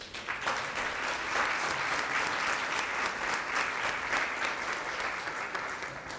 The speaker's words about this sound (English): As they come up, we want to make sure that we give God a hand clap.